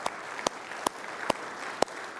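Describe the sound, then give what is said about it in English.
An audience applauds the Lord during a morning church service, a dense steady wash of many hands clapping at moderate volume, with a few sharper individual claps standing out at a loose, roughly regular pace. No one speaks. “So let's give the Lord a big round of applause for their salvation this morning.”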